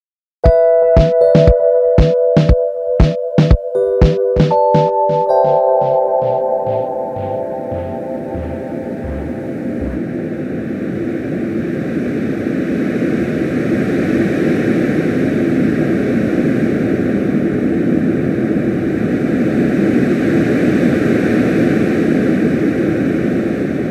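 A rapid run of clicky pulses with a few bright electronic tones gives way to a steady, rushing wash of ocean-like noise from a sleep sound machine on its 'Ocean One' setting, continuous and fairly loud with no talking.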